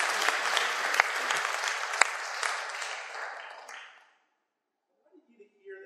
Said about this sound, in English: Give them a round of applause, folks. Thank you.